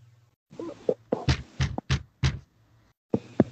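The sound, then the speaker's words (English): A series of sharp knocks on a door with a rhino painted on it, in an uneven rhythm, about half a dozen fairly loud raps, a brief pause, then one more knock, with a low hum underneath. “Knock on door.”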